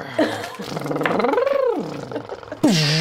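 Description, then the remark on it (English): A human voice imitates spaceship engines powering on while pretending to pilot the ship, making a rising and falling whooshing, growling tone that swoops up and back down, then ends with a sudden louder burst. “The engines start powering on. It does sound like a horse.”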